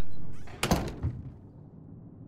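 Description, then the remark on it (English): A door is pushed shut with a solid thunk and a brief rattling follow-up knock, then fading into quiet. “So, go ahead and close the door.”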